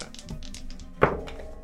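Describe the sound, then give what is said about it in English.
Dice clatter across a tabletop in a quick run of light taps, then a sharper knock as they settle, with a short ringing tail. They are rolled with advantage for a strength check to break a door. No one speaks. “I am going to roll with advantage, but it's still...”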